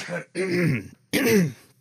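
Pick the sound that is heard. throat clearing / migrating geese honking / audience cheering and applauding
throat clearing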